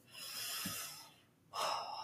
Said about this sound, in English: So why don't we release the burden off of our shoulders and take a nice deep breath.